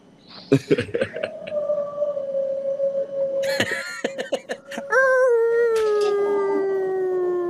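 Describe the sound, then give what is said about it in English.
A person imitates whale calls with a long, drawn-out moaning tone that swells louder and wavers midway, over scattered clattering and bumping noises. “We got the whales with us.”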